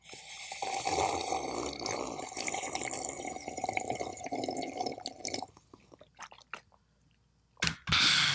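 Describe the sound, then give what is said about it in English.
Someone takes a long, airy slurp of hot tea, followed by a few short sips and small mouth clicks, then a brief final slurp. “Okay, you know, I was going to ceremoniously have a sip of tea.”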